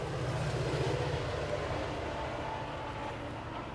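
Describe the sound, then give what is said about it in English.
A train rolls past with a steady, heavy rumble and broad rushing noise that holds fairly loud for the whole stretch, with no one speaking. “We get 2 minutes back from train breaks.”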